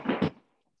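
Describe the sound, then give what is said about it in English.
A dog barks twice in quick succession, two loud, sharp, harsh yaps that cut off abruptly and leave near-silence with a faint murmur at the end. “My dog is being so loud.”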